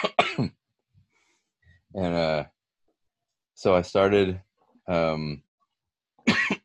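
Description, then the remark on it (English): A brief spoken phrase, then a series of harsh, throaty coughs from a lingering cough, in separate bursts with short pauses between them. Fairly loud. “I'm like, I have this lingering cough.”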